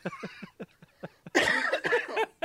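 A sick person coughs: a quick run of short, throaty coughs in a steady rhythm, then a louder, harsher hacking fit with a few more rasping coughs, fairly loud, with no talking.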